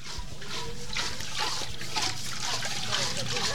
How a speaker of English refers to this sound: In the tiny jungle village of Veragala in central Sri Lanka, half a dozen locals gather at the communal water well. Women chat as they take turns pumping the rusty metal handle to bring water to the surface